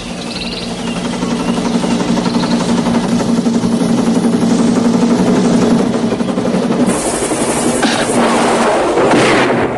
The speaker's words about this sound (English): Rambo fires a missile at a walkway. The walkway explodes. He fires more missiles. Guards scatter. Rambo fires machine guns into the camp, killing guards.